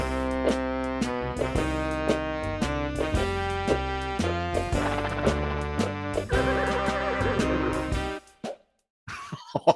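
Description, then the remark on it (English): A horse whinnies amid loud, dense film soundtrack music with sustained tones. After about eight seconds the music cuts off, followed by a short pause and two brief, sharp bursts. “I'm like trying to figure out where is this horse music supposed to fit in Battlefield Earth”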